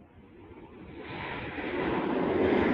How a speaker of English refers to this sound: Oh, there's a plane. I'm going to just wait for this to go over.